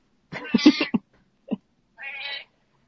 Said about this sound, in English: This cat's yelling at me.